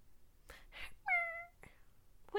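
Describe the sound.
A drawn-out, plaintive cat meow that slides downward in pitch, fairly loud, with another meow just beginning at the very end. Soft breathy noises come before it.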